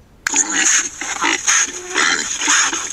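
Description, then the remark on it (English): A hog grunts and snorts repeatedly in short, rough bursts, loud, over a steady hissy background with no talking. “That hog is certainly enjoying himself.”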